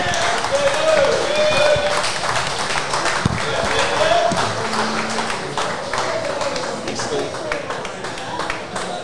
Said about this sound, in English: This is our second time here at Paraleagues, the home of the Eels. So, everyone, a round of applause